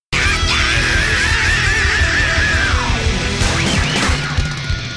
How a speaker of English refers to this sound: Then he's got this scream with guitars.